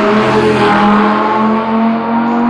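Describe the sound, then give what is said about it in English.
A BMW 318 Grand Tourer 7-seater car's engine runs steadily, a loud continuous hum with a low droning tone that holds even throughout, and no one speaking. “We are in my BMW 318 Grand Tourer 7-seater.”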